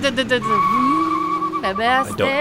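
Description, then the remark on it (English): A voice imitates a car skidding away: a sustained vocal screech that slides in pitch, rises and breaks off, with no other sounds around it. “Car sound.”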